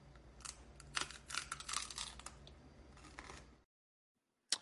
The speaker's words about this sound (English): I love the combination of mango and strawberry, which is in the fruit roll-ups, and I just love the crunch.